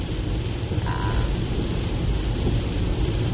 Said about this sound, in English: I don't like driving in the rain. I love the rain when it's not super heavy and I'm not on a highway. And because it's raining so hard, I don't even know.